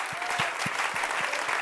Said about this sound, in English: Give the Lord a great clap. Geef God een grote applaus hier vanavond.